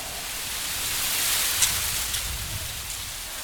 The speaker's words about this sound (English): I love the sound of tinkling bellbirds. Oh, and trees rustling in the wind.